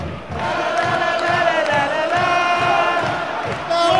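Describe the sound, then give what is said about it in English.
A large crowd of fans at a Watford FC football match chants a sustained, rising 'whoa' together while rhythmic clapping keeps a steady beat underneath, loud and filling the whole stretch. “Right, I'm gonna do some clapping and go whoa, and then I'll report back.”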